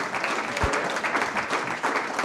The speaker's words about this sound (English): So let's give one more big round of applause for our mayor.